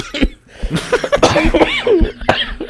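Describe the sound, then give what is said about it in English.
Several sharp coughs burst out in an irregular cluster, loud, mixed with breathy laughter-like sounds over about three seconds, with no speech. “We just started coughing for no reason.”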